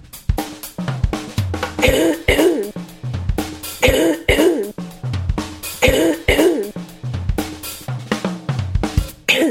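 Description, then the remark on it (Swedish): Someone coughs hard and repeatedly, a run of loud, rough bursts in quick clusters, with some throaty clearing mixed in and no talking. “Jag ska bara hosta.”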